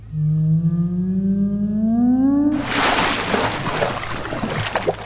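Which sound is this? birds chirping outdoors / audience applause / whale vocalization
whale vocalization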